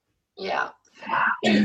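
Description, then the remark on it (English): Three rough, raspy bursts of throat clearing and coughing in quick succession, each fairly loud and noisy with a voiced, gravelly edge, the last one sharpest. “Excuse me, everyone. I've got a cough.”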